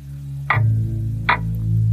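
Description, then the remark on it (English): Two distinct ticks of an old clock on a thick wood mantel over a brick fireplace in a living room, evenly spaced under a second apart, fairly crisp over a steady low background hum, with no voices present. “To the left of the entryway is a spacious living room with a brick fireplace and a thick wood mantel on which someone has left an old clock.”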